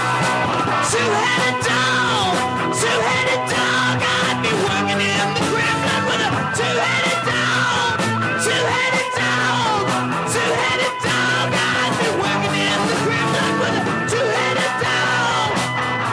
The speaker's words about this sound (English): He has a super great screaming voice. It's very effective in this kind of songs that he sings.